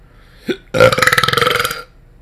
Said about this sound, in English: Oh my god. Yeah. That was a morning manly coffee burp. Potentially, a professional would cut that out, but I'm so impressed with that, because I'm not much of a loud burper, that I will leave that in.